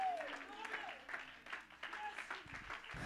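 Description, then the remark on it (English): A church audience stands and claps their hands unto the Lord in a dense, continuous patter of many hands, with voices calling out and speaking loudly over the applause throughout. “Oh, somebody stand across this building and clap your hands unto the Lord.”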